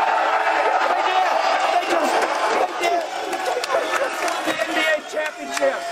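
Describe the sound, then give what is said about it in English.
A large crowd at Super Bowl 57 cheers and shouts continuously, a loud, dense roar of many voices with excited yelling rising and falling throughout. “So happy the crowd is great.”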